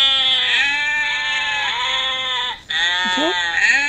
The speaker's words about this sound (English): Sheep. Okay, the sheep. Selected. Sheep.